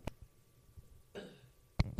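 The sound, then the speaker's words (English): A short, fairly quiet burp from a man after drinking a Coke, with a rough, buzzy tone, followed a moment later by a brief sharp knock-like noise. No one speaks. “He had a soda burp.”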